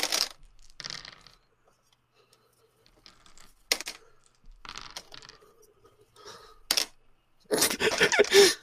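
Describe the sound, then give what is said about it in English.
Five dice clatter and tumble across a hard surface, rolled for a wits investigation: scattered light clicks and short rattles, then a louder, denser burst of clattering near the end. No one speaks. “Well, can you roll me another wits investigation?”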